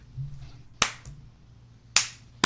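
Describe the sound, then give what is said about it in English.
A few slow, deliberate hand claps, a slow clap for David Lynch, sharp and spaced out with quiet gaps between them and no one speaking. “It's a slow clap for David Lynch.”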